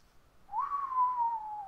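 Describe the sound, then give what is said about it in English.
A single long, low whistle that swoops up briefly, then holds and slowly slides downward in pitch, steady, with no talking around it. “And after a couple minutes of looking, just makes a long, low whistle sound.”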